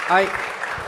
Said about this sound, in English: Somebody else, yeah, that deserves a clap.